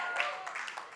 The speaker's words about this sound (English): Everyone's like clapping, like, oh, my friend, yeah, bro.